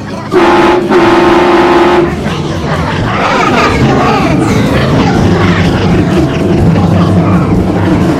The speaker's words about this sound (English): Oh, there's a train horn.